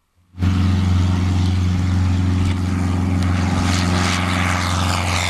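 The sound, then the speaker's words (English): A propeller aircraft drones steadily while seeding clouds by firing silver iodide into them over drought-stricken provinces around China's Yangtze River, its engine a loud, sustained low hum with a strong fundamental tone and buzzing harmonics, starting abruptly and holding constant throughout without any voices. “Aircraft are firing silver iodide missiles into the clouds in drought-stricken provinces around China's Yangtze River.”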